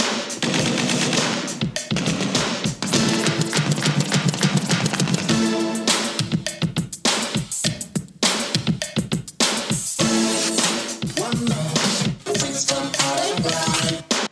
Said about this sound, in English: I don't care what era you're a fan of. That is some beautiful beat making. And all throughout, the track is peppered with fun little synthesizer riffs or stabs and samples of this and that.